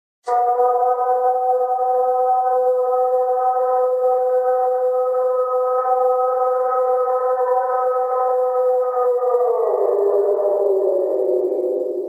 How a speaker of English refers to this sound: So good. Yeah, that's pretty much the gold standard of Ohio Howls right there. You know, that's just fantastic.